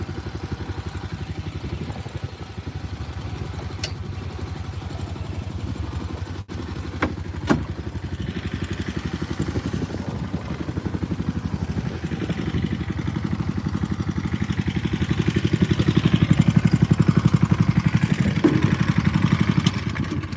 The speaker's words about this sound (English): Best engine in the world, that right there. Nothing compares. When you buy a Honda engine, insist on the red engine with a white metal fuel tank. That's the good one.